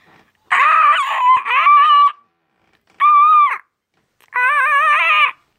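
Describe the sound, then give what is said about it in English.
A six-year-old child's voice does an impression of a parrot, squawking in three loud, harmonic bursts: a long screech, a short shrill cry, then another drawn-out squawk, with brief silences between. “This is my impression of a parrot.”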